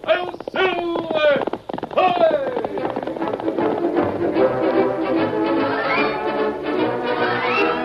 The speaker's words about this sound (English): From out of the past come the thundering hoofbeats of the great horse, Silver. The Lone Ranger rides again.